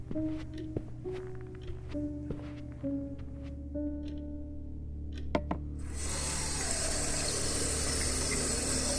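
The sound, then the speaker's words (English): A few clicks and a low humming pipe whine that rises in steps, then a tap bursts on and runs in a steady, loud rush for the last few seconds, filling a glass of water. “Sure, let me just get you a glass of water first.”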